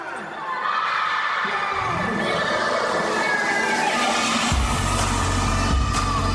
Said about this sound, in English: An explosion of happiness. These kids are so excited because they are receiving toys for the very first time.